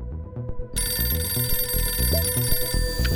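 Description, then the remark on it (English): A telephone rings with a bright, sustained electronic tone over a dense, pulsing musical backing that swells in after a brief quieter opening. No one speaks. “And what you need to know is that for this week's spy, it all started with a phone call.”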